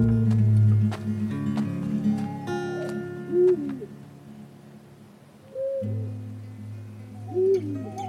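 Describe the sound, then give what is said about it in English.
An owl hoots a few times at spaced intervals, its soft, wavering calls carrying over a steady low rumble of night ambience, with no one speaking. “When you're out camping, like, there's just always, like, twig snaps and, like, owls hooting or whatever outside, and it takes a while to get used to.”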